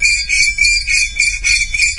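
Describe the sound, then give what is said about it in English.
A fork scraped across a glass, making a loud, shrill, steady squeal that swells and dips in repeated strokes roughly every half second, with no talking. “Anyway, here is fork on the glass.”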